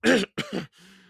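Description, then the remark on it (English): Two quick, rough coughs into a handkerchief as Mr. Poe coughs, like someone clearing their throat, trailing off into a low, short voiced grunt. No speech accompanies them. “Yes, and I'm sure he's very sensitive about that, so don't ridicule him, Mr. Poe said, coughing again into his handkerchief.”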